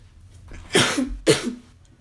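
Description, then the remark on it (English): Two sharp, explosive sneezes about half a second apart, each a sudden loud burst of breathy noise that quickly fades. No one speaks. “Bless you. Thank you.”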